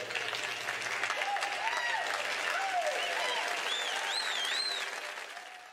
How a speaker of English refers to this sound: And yes, give me some hand claps. Give a bitch some hand claps.